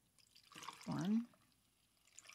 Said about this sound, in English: So this is full of ice. And fresh ice is not full of liquid. I mean melted ice, water. First, let's add our rum. So I'm going to do 2 full ounces of rum.